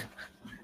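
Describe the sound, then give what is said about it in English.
Puppies whimper and pant softly for a brief moment, ending in a short high yelp-like whine, fairly quiet, with no talking. “Teleport and puppies.”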